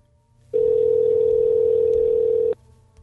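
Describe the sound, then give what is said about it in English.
A telephone ringback tone on a call placed to a contest winner: one steady, loud electronic buzz held for about two seconds, then cut off, with faint line hiss before and after. No one speaks. “But rather than me just read the name, here's the phone call I just made to the winner.”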